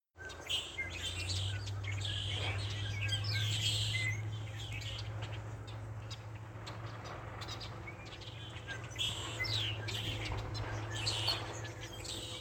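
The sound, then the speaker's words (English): A flock of red-winged blackbirds calls from a tree in a yard on Orcas Island: overlapping chirps, trills and whistles fill the air continuously, fairly close, over a steady low hum. “These were red-winged blackbirds that were all hanging out in a tree in someone's yard on Orcas Island.”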